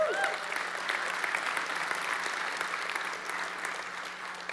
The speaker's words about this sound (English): But I'm just curious, for those of us that are sitting in here, and how many of you have read the Bible and it changed your life? I just would love to hear maybe an applause if that's true for you.